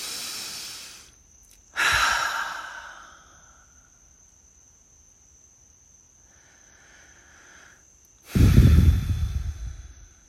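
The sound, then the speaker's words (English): Airy breathing: a slow, deep inhale through the mouth, a long held pause, then a full, audible exhale like a sigh. A faint steady high hum runs underneath. “A lot of us have very shallow breathing when, with some practice and intention, you could have a breath that is deep, like this.”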